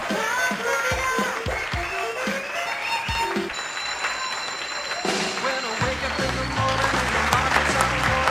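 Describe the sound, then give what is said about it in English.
An audience claps steadily over a busy, tonal background with occasional low thumps, and the applause swells a little louder toward the end. “They're clapping even harder.”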